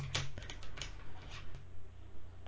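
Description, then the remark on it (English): Quick, irregular clicking taps of someone typing on keys to message somebody, with a steady low hum underneath and no talking. “Now I'm typing to somebody.”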